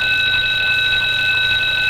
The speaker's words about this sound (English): What's wrong? Why the alarm bell?